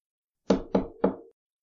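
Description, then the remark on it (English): Three muffled knocks on a door in quick, slightly uneven succession, dull and bass-heavy, each blow ringing briefly before the next, with silence all around. “He nearly drops his phone in shock when the quiet rush of the snow is broken by a dragging thud and then a muffled sound of knocking.”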